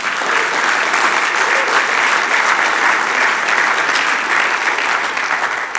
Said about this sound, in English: I should get a hand clap of praise for the women in this church.